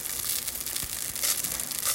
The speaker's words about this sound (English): Why listen to Christmas music when you can listen to the sweet sounds of frying latkes?